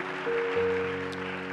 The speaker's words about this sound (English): Hallelujah. Oh, hallelujah. Give the Lord a clap. Give the Lord a clap.